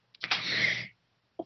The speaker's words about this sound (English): Bless you. Thank you.